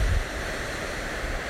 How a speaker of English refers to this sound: And I came up with the idea to record this little relaxation that I want to share with you and that you can listen to with the lovely waves in the background whenever you feel like you need to go on vacation or you need a quick break.